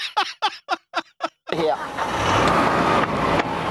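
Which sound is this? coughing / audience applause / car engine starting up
car engine starting up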